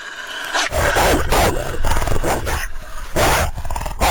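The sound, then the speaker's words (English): A pack of about 12 or 13 wolves, including a large black one, snarls and barks, several loud overlapping growls and harsh barks coming in bursts with no pauses, dense and aggressive throughout. “Look at the size of that black wolf!”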